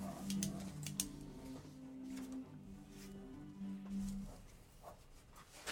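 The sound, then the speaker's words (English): Quiet scratchy pen strokes on paper as someone draws an igloo in a geometric fashion, a few short bursts of scribbling spaced irregularly, with a low steady hum underneath and no talking. “again, trying to do this in a geometric fashion with pens that ever work!”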